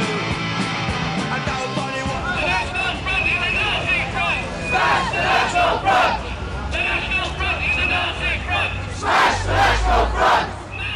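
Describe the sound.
A large protest crowd at a National Front march in 1970s Britain shouts and chants in waves, many voices rising together into loud bursts over a constant roar of noise and babble.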